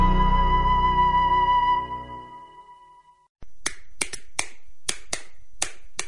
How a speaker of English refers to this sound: What's the universal language of a fan? Clapping your hands.